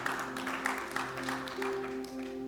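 A church audience claps together during a sermon in a steady, dense patter, with sustained keyboard or organ notes holding underneath the applause throughout.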